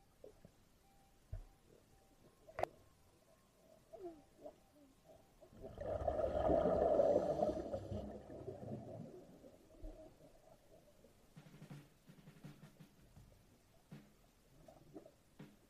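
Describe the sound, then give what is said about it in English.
A seal in the water, being petted by a man, gives one loud, rough, drawn-out grunt lasting about two seconds, with quiet sloshing and faint splashes around it before and after. “Here is a dude petting a seal.”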